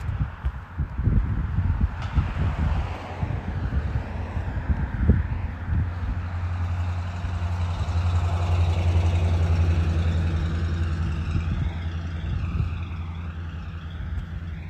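A heavy truck engine rumbles, its deep steady drone holding for several seconds as if idling, with gusty wind buffeting the microphone throughout and no one speaking.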